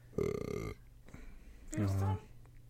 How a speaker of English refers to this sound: Burping in the microphone.